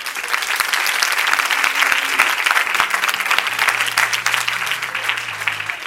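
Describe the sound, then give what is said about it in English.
A large crowd claps steadily for about six seconds at the end of a sermon, a dense, even wash of many hands with no single voice standing out. “Clap your hands.”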